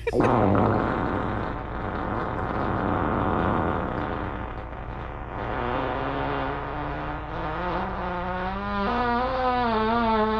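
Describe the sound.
A person blows a long, loud raspberry imitating a fart, a buzzing lip flutter that wavers in pitch for several seconds and slides upward near the end, with no talking.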